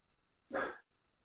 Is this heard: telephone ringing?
no